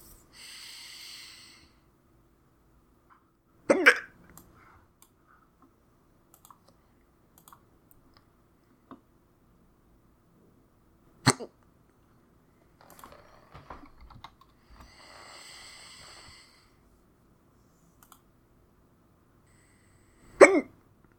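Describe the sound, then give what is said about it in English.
Three sharp, loud, painful hiccups, each a sudden jolting gulp spaced several seconds apart, with soft breathing and faint rustling in between and no talking. “Man, those are gnarly hiccups, too. They hurt.”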